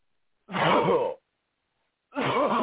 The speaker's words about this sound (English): Come out in Jesus' name. Amen. Cough it out.